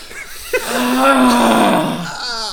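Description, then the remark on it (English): A voice imitates the cartoon character Peter Griffin's wheezy breathing: one long, loud, droning groan with a slowly falling pitch, ending in a brief raspy breath. There is no other talk. “Like, he comes back, and he's sitting there doing that, like, Peter Griffin breathing thing, where he's like...”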